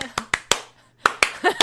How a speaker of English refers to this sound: I'm clapping my cheeks. My cheeks are being clapped. My cheeks are clapping. My the cheeks clap are of clapping. My ass cheeks. Are clapping to the opening credits.